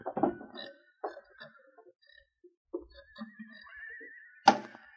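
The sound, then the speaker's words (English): A heavy metal safe door being worked open during a holdup: several clunks and rattles, a drawn-out creaking squeal, then a sharp loud clank as it comes free. “Get over there and open the safe.”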